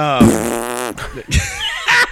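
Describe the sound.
A person on a Zoom call blows a loud raspberry-style fart noise with the lips, sputtering for about a second, followed by two shorter buzzy bursts with breathy pauses between them.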